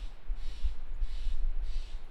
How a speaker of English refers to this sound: You hear that crow? That crow's like, yo, honor yourself. Feel those emotions.